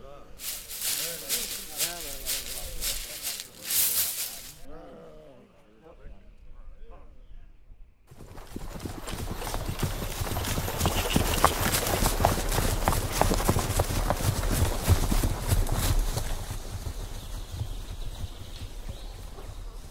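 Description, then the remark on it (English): Horse hooves clip-clop in a steady, fairly loud rhythm through the second half, after a stretch of talking voices and a brief quiet pause. “Quick, let's get back to the horse.”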